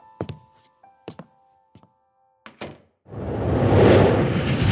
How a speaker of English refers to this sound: Please, I'll latch the door.